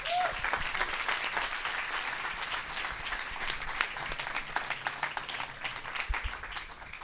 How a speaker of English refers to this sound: I'd love us to give her a really, really warm round of applause, as well as open our hearts to the things that she's going to bring to help us today.